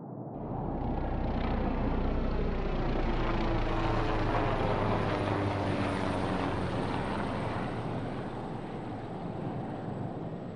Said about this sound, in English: You have a battle with the wind. Then you finally manage to get the helicopter back in the air.